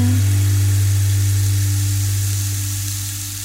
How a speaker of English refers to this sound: Oh, did you hear that? That's called a rain stick, with that kind of noise. Could have that for What's That Noise, and nobody would ever guess it, would they? but yeah, rain stick is a very, very cool instrument